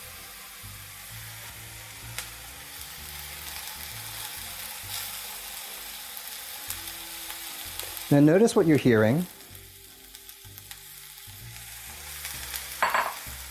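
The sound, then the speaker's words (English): Mushrooms sizzle steadily in a pan of hot, freely flowing oil, a soft, mellow crackle with a louder burst of clattering and stirring partway through. A man speaks briefly over the frying. “You're hearing a nice sort of mellow sizzle.”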